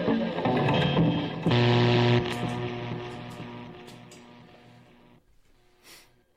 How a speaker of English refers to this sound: We need some echo.